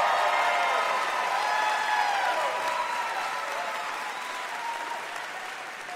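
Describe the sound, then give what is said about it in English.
A live audience bursts into steady applause mixed with whoops and cheers at the mention of the Lady Vols, loud and sustained throughout, tapering only slightly toward the end. “You get a little cheer just for saying Lady Vols.”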